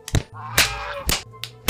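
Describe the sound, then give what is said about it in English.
Five sharp, loud whip cracks snap out in quick, uneven succession, with a low, buzzy honking tone sounding in the gaps between them. “When a turkey comes along, you must whip it. Whip it good.”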